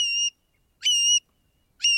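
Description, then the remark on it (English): A long-billed curlew calls three times, clear whistled notes rising at the start, evenly spaced with short silences between, loud with no other sounds around. “The long-billed curlew, which winters on the Florida, Gulf, and Pacific coasts, actually heads inland to nest in the grasslands and sagebrush of the arid west.”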